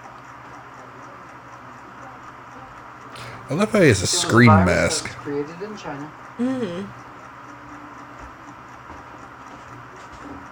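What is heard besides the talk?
ticking noise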